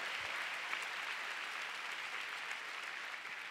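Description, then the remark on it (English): A church audience claps together to give God a big hand, in a steady, dense wash of applause that holds at an even, fairly loud level throughout, with no voices standing out above it. “Let's give God a big clap.”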